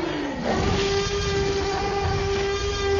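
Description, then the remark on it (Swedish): The Tyrannosaurus rex roar from the first Jurassic Park film, a blend of five different animals edited together in a studio: one loud, rough, sustained bellow with a steady, slightly dipping tone, droning for about three seconds with no talking over it. “Du kanske kommer ihåg hur den stora dinosaurien är, Tyrannosaurus Rex, hur den lät när den skrek.”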